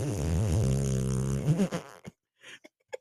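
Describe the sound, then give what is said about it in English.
A voice imitates a home front doorbell, part of a Vivint security system, that plays a fart sound when pressed: a long, buzzing fart lasting about two seconds, followed by a few short sputtering bursts and clicks. “And our front doorbell right now. Doesn't work. No, it's a fart. Legitimately, like you press and it's all.”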